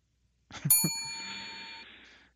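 A bright metallic bell dings once, its clear ringing tone sustaining and slowly fading over a couple of seconds, preceded by a brief low thump.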